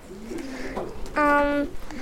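Pigeons coo in a loft, soft throaty murmurs building into one louder, sustained rolling coo before trailing off into quieter background noise.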